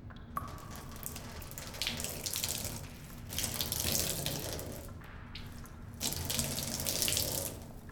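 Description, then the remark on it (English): Water gushes steadily into a makeshift bathtub in a bunker, a continuous splashing pour that swells louder in a couple of surges and briefly eases between them, with no voices. “And while the bunker didn't have much in the way of running water, it did have the makings of a bathtub, and plenty of leftover soap.”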